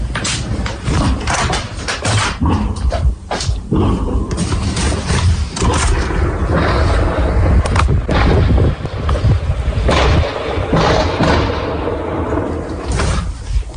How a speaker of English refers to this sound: Perhaps a gun expert or somebody else might be able to shed some light. This is the audio of which he thinks may have been, in and around the lock area where she lives, the sound of gunfire, 20 to 6 in the morning, early Monday morning.